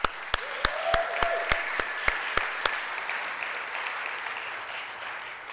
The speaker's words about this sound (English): Please give a big round of applause to my co-host today,